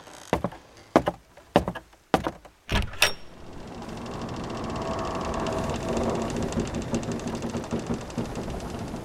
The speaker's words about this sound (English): He gets up and pulls open like a drawer at his desk, and he just takes a handful of like these sea stones, kind of limestone, and he goes, let's get closer.